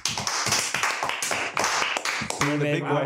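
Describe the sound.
A short burst of brisk hand clapping, quick irregular claps over a few seconds, with voices chiming in near the end as the applause fades.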